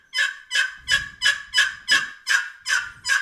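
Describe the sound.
A run of eight raspy, turkey-like yelps played with short paddle strokes on a long box call, evenly spaced at a steady, quick rhythm. Fairly loud, with no talking.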